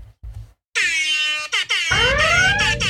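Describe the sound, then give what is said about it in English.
A loud air horn, used as a contestant's answer alert in a a band trivia quiz, blares for about two seconds, a bright harmonic-rich blast that briefly cuts out, then resumes with a rising, wavering pitch over a low rumble. “is the horn, and okay, we got it.”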